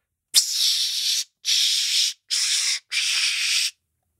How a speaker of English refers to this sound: And what was that? That was Dark Temptation. I don't know what Dark Temptation is. The Body Spray.